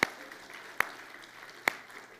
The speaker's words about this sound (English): Head out those double doors. We're going to give them a nice little round of applause.